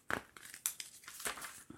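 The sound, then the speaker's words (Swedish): Paper rustling and crinkling, a quick run of irregular crackly bursts with one sharp crunch near the start and another midway, with no voices. “Har du papper och penna? Vänta.”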